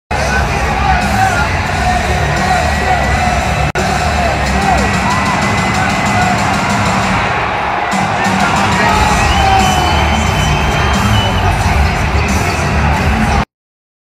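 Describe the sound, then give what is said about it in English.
A loud, sustained crowd roar fills the whole stretch, dense with overlapping yells, cheers and whoops, holding steady at full volume before cutting off abruptly. “Definitely a roar.”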